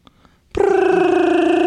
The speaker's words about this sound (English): Bring. Bring. One second, baby. Big Money Hustle got to answer the phone.